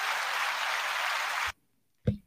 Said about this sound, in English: Which one was the hand clap? I think I'm gonna go for this one.